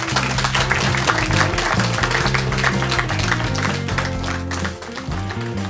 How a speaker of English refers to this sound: Thank you very much, everybody. Please give Bruce a round of applause.